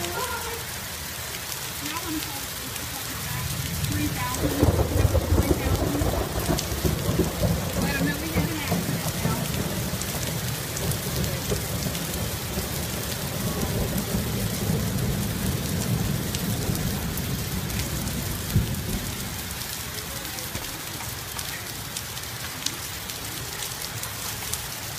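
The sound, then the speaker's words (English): Heavy rain pours in a steady, hissing roar during a flash flood, with a long, deep rumble of thunder swelling beneath it for much of the middle before easing back to rain alone. “Look at that dumpster. It's a flash flood.”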